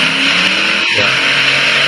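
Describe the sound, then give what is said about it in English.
A pulling tractor backed up to the sled takes off at a tractor pull in Arcola, Indiana. Its engine roars loudly and steadily, with a brief swooping rev near the middle as the driver gets off the throttle, before the heavy, throaty drone carries on, dominant. “Tractor takes off. He's getting off the throttle.”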